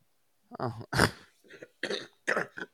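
A heavy coughing fit from someone who is really sick: several harsh, chesty coughs in quick succession, one especially loud burst near the start, then a few rougher, raspier coughs trailing off.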